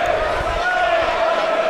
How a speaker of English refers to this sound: Good healthy crowd in here as well this afternoon for Sunday afternoon rugby, as the traffic thunders over the Barton Bridge away to our left.